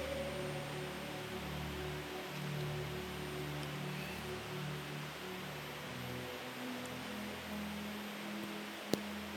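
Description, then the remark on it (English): Heavy rain pours in a steady, dense hiss for the whole stretch, with low droning hum tones shifting underneath and one sharp click near the end. No one speaks. “You know, it's raining literally cats and dogs here.”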